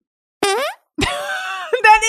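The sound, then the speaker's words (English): A voice imitates squeaky, high-pitched, feminine-sounding farts: a short falling toot, then a longer wavering one and a quick final squeak, fairly loud. “That's like the fart version of women who sneeze like this.”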